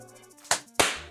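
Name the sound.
single hand clap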